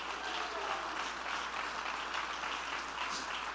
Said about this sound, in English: I wish somebody would jump to your feet, clap your hands, and shout, let the baby live! Let the baby live!